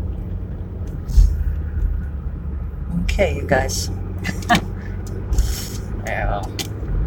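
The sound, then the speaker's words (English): Steady low traffic rumble from cars fills the background, with engine noise swelling slightly as two cars start up very slowly from a traffic light, while a person talks briefly over it. “Don't you love it when you're like behind two cars that start up very, very slowly from the light, and they're like absolutely in tandem, so you know that there's no chance you'll ever be able to pass them?”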